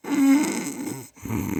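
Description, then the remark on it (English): A person imitates a dog snoring with a low, raspy, rumbling snore that pauses briefly and then starts again, loud. “Why are you snoring? Because that's what I hear behind me with my dogs.”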